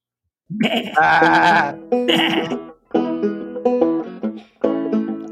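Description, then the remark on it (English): Several loud sheep bleats in quick succession, each a wavering, nasal cry with strong harmonics, separated by brief gaps and heard without any talking. “I feel like this puts the parable of the lost sheep in a whole new light.”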